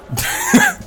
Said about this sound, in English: I'm frazzled. I'm still sneezing. Whoa. Like halfway through the sentence, I sneeze again on Kinnick.